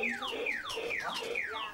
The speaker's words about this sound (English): his two young kids ride around the living room on a shiny new bike with a squawk box.